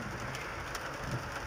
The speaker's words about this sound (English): It's raining in Jerusalem.